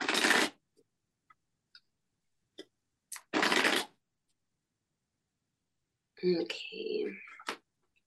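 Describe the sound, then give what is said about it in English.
Two quick riffle bursts of a tarot card deck being shuffled, crisp, separated by a few soft taps and clicks, followed by a short stretch of someone speaking. “So I'm just going to shuffle from my tarot deck, and then I'm going to start pulling some cards.”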